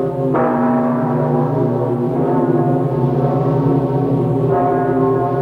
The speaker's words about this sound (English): A bell is a parish clerk calling for assemblies, church services, and tolling the time. It announces a wedding, or a christening, or a death.